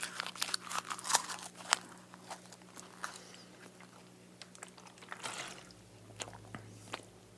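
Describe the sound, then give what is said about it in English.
Wet chewing of crinkly paper torn from a book page and rolled into a wad, with irregular crunching and squishing bites spread over several seconds, loudest early on and softening toward the end, with no talking. “I roll them up, you know, into almost like a chaw of tobacco, and then just start to chew.”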